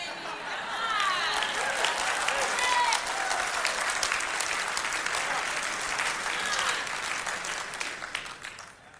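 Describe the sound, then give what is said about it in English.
Sustained audience applause, a dense wash of many hands clapping steadily for several seconds with some cheering voices mixed in, then thinning out and fading toward the end. “Thank you for clapping, but it's not the point.”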